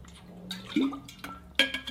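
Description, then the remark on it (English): Someone takes a drink: a soft low gulp, a couple of faint wet clicks, then a sharper clink as a glass or bottle is set down. No one speaks. “But in my opinion, let me drink before that.”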